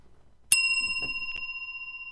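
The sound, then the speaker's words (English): A single bell is struck sharply and left to ring, its bright metallic tone sustaining steadily with a slight shimmer, with faint background noise and no talking. “Five bells in 1 2-hour show.”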